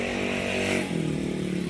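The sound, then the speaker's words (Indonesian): A high-pitched Moto3 racing motorcycle engine, from the lower class of bikes below MotoGP, screams steadily, its buzzing tone dipping briefly as the rider shifts down, then holding a slightly lower, raspy pitch. No one speaks. “Iya, ini Moto3. Beda suaranya.”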